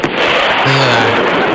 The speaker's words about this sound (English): That's what a sonic boom sounds like when a jet rips the sky.